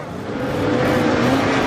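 A lorry engine revs up loudly, its steady roar building slightly as the vehicle accelerates away at great speed, with no voices.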